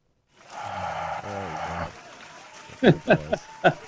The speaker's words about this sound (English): Oh, the applause. The applause.